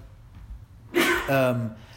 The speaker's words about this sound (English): Gesundheit.